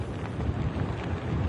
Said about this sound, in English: The outer bands of Tropical Storm Nicholas are churning up the Texas coast tonight. You can see the wind and the heavy rain kind of bringing and churning up the surf right now, and it's only expected to get worse over the next